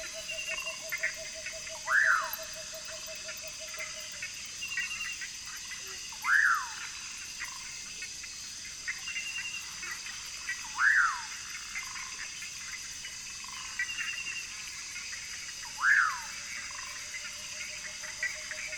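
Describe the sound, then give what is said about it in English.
A tawny-bellied screech owl's rapidly repeated toots form a steady low trill at the start and again at the end, in a wetland at night, over a constant insect hum with four sharp frog-like chirps spaced apart. “And there, the rapidly repeated toots of a tawny-bellied screech owl.”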